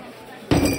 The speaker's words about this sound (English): I threw back what was left of my now tepid piss water and slammed my glass down a little too hard. A bit of bourbon sloshed out of the stranger's glass and onto the resin bar top.